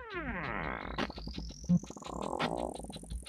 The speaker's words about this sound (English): Analog farts are always good. Yeah, all I was going to say that. That the more gas, like, the more gas, the more authentic it is. That sounds like lactose synth.